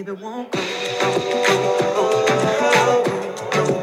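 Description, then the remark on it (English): A pop song bursts in after a brief low murmur, playing loud and full with a steady driving beat, bright layered synths and sustained melodic notes throughout. “So, here's some of the songs.”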